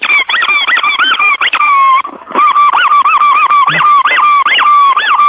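A squeezed rubber horn, squeezed very hard and very fast, honks rapidly and loudly, a nearly unbroken string of bright, wavering honks with one brief pause, with no voices.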